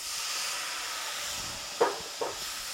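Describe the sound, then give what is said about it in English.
A cup of white wine sizzles in a hot pan of rice on a stove at medium heat with a steady, bright hiss. Two short clinks or scrapes break through near the end. No one speaks. “And it's also starting to sizzle a little bit.”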